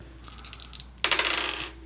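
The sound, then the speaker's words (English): Dice rattle and clatter across a hard table, a few light clicks first, then a busier burst of rolling and tumbling that gradually settles, with no voices. “I have a box of dice right there.”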